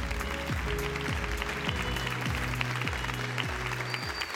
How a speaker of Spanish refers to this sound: Así que quiero pedirles que la reciban con un caluroso aplauso